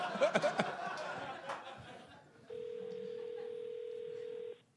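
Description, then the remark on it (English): A few quick phone-dialing beeps for an Oregon number mixed with faint laughter and voices, then a steady, fairly loud telephone ringing tone holds for about two seconds before cutting off. “It does say serious inquiries only, so let's just make sure that someone's phone's going to ring.”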